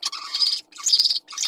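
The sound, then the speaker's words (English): Zebra finch song: three harsh, buzzy bursts of chirping, each about half a second long, separated by brief silences. Fairly loud, with no talking. “So significantly shorter than what you see in normal zebra finch song.”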